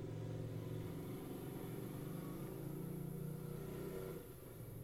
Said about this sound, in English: Sometimes it's really difficult to record a podcast, especially when it's really hot out. As you can hear right now, there's a motorcycle going by.